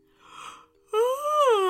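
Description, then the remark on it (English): On waking up on a summer morning, a breathy intake of air, a brief pause, then a long, loud voiced yawn whose pitch rises slightly, holds, and sinks away as it trails off. “Aziz woke up with a big yawn.”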